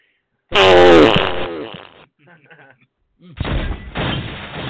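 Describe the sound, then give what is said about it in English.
A loud, sputtering fart sound effect bursts in with a rough, buzzy rumble, fades into a few faint flutters, then a second coarse blast follows. “fart.”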